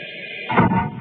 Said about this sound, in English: But when I press this white button on the panel, compressed air forces the water out of the chamber and closes the outer door at the same time.